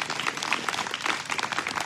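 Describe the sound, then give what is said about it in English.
A crowd bursts into steady, sustained applause, many hands clapping at once in a dense, continuous patter at moderate volume without any voices on top. “Go ahead, put your hands together. It's going to clap together.”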